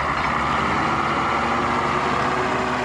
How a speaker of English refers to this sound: A road grader repairs a soy highway washed out by torrential rains. Brazil is rapidly paving a path through the Cerrado frontier to its future.